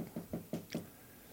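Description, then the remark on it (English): Four quick, firm knocks rap on a door in a steady rhythm, then the sound stops and falls quiet. “Who's at the door?”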